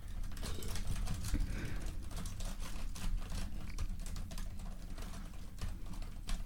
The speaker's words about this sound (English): That's some fancy typing you're doing now. I just accidentally opened Google Translate while randomly typing.